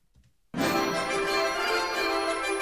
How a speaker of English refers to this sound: We have a new guest alert. Hit that bell